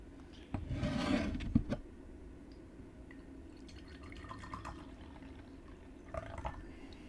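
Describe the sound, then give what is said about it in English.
A brief splashing pour of tea into a cup, followed by soft trickles and drips. It is fairly quiet, with no one talking. “Good, so now we're gonna pour the different tea.”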